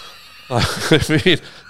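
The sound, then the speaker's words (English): A voice imitates a squirrel screaming in the night with a sudden burst of shrill, wavering squeals, rising and falling in a few quick pulses, loud for just over a second before cutting off. “I just heard a squirrel screaming in the night.”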